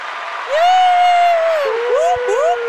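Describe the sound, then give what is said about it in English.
A loud crowd cheers for the 2023 Pinnacle of Achievement Award winner from Lenoir Community College, with one long sustained whoop that bends slightly, followed by a couple of short rising whoops over a steady wash of noisy cheering. “All of Lenoir County is cheering for you right now.”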